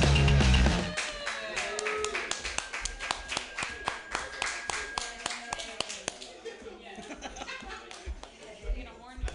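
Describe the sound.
An audience at the Joke Workshop claps for several seconds as a comedian starts a new set: a dense patter of sharp, overlapping hand claps that gradually thins out, with a few voices and light chuckles mixed in underneath.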